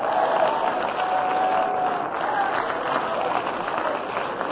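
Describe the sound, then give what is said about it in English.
A church audience claps steadily for several seconds, praising the Lord: a dense, sustained wash of many hands with faint voices calling out beneath it. “Everybody clap your hands and shout yes to the Lord.”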